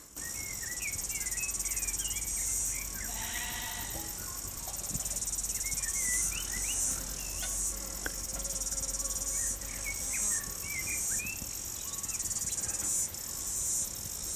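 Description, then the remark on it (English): A steady, shrill buzzing of cicadas fills the outdoor air on a hill in a New Zealand summer, two days before the summer solstice, without a break, with scattered bird chirps and small rustles of breeze in the trees underneath. Nobody speaks. “I might pause a moment and let's take in the sounds around together, the lambs bleating, cicadas buzzing, the breeze rustling in the trees above.”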